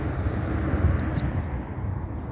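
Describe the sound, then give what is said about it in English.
A steady, fairly loud low rumble of a helicopter passing overhead, a continuous engine drone with no voices and no distinct breaks. “And just like I was documenting, as the entity was stalking via helicopter, go over that.”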